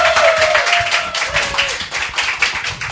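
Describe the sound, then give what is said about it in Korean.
Steady, dense clapping from a small group welcoming a pop culture critic as the guest of a talk show fills the whole three seconds, fairly loud and continuous, with a faint falling whistle-like tone over the first half. “오늘의 게스트 박지종 대중문화평론가를 박수로 모셔보도록 하겠습니다.”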